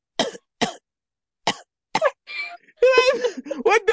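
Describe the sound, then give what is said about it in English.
A person imitates a man who randomly started coughing: four sharp, separate coughs spaced unevenly, then a raspy wheeze and a drawn-out, strained vocal sound, fairly loud. “That shit, cause the dude just randomly started coughing.”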